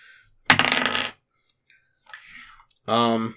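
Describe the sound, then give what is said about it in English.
A short, loud clatter of dice rolled across a table for a climb check in a tabletop game, followed by a softer rustle and then a brief burst of voice. “Didn't roll very high, but I do have a pretty decent climb check.”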